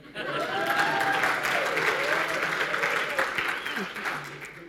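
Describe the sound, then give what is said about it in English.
An audience claps steadily for several seconds, a dense, even wash of applause that holds its loudness before easing off slightly, with some voices audible through it. “I was expecting a clap.”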